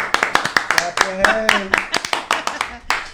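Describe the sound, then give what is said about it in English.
Hands clap in a brisk, steady rhythm, about fifteen sharp claps in three seconds, with a brief vocal whoop sounding underneath partway through. “And now for the queen, everybody, clap your hands for the queen.”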